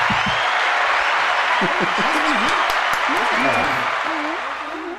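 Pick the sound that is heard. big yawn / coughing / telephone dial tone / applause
applause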